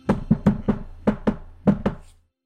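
impact, knocking on a door

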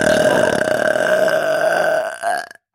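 human body sound, deliberate burp

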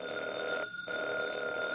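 household object, telephone bell ringing

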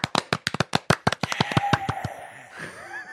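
crowd, applause

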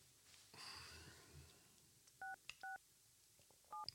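signal or alarm, telephone dialing tones

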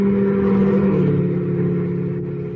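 vehicle, cars driving past

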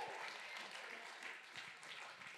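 crowd, round of applause

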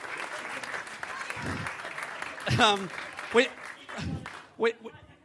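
crowd, audience applause and cheering

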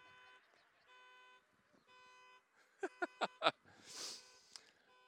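vehicle, car horn honking

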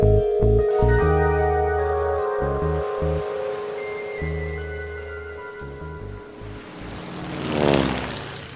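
vehicle, propeller plane engine

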